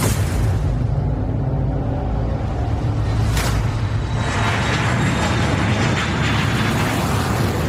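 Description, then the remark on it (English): A steady, loud roar of an airplane engine in flight, carrying a microchip from Bangkok to Berlin, with a deep low rumble and a broad wash of noise that swells briefly near the middle. No one speaks. “It's being transported by plane from Bangkok to Berlin.”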